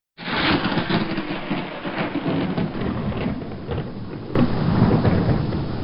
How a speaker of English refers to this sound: In the distance, dry lightning spins a brief web between sand and sky. That first slow rumble has tempted me out of the hide I dug the night before.